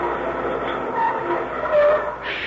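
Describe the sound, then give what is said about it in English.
A streetcar brakes to a stop: a steady grinding rumble with thin metallic squeals rising over it, fairly loud, with no voices. “This is our stop, dearie.”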